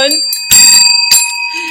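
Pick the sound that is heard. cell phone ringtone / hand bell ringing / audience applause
hand bell ringing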